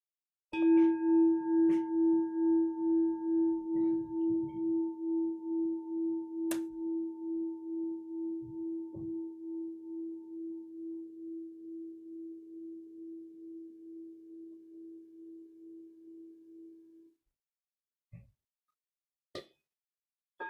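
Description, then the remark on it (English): A single mindfulness bell is struck once to mark a refuge practice, ringing out with a steady, pure low tone and a higher overtone, slowly fading over about seventeen seconds, followed by a few soft clicks. “So for those of us who've now taken refuge, we've gone for refuge, I'll mark this practice by inviting the bell of mindfulness.”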